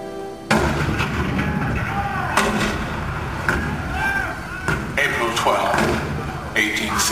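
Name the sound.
cannon fire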